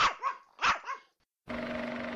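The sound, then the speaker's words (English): Puppies bark, four sharp yappy barks in two quick pairs, then a brief silence before a steady, loud droning noise with a low hum takes over. “Did you like that one, puppies?”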